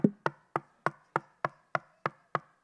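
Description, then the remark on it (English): A steady run of about nine sharp knocks on a door, evenly spaced, each with a short resonant decay, with no voices. “Because he stands at the door and he knocks.”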